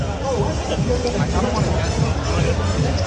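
Dense crowd hubbub with many overlapping voices, a steady, loud wash of indistinct chatter and bustle at a street festival on Arthur Avenue, Little Italy in the Bronx, held the weekend after Labor Day, no single speaker standing out.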